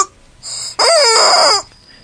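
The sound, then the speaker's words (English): A rubber chicken toy, squeezed and then let go, lets out one loud, wheezy squawk lasting under a second, preceded by a thin whistling hiss of air. “Mine only sounds, after you squeeze it and you let go, it sounds.”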